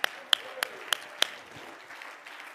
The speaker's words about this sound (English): God, you shall supply all of our needs. Oh, clap your hands and praise Him this morning.